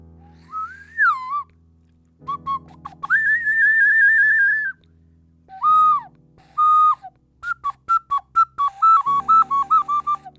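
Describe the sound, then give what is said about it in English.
A South American clay ocarina plays a breathy, pure-toned melody of sustained notes and quick short phrases, fairly loud, over a low steady hum, with no one talking. “And I play my Spanish clay whistle. Or no, the South American clay whistle. The ocarina.”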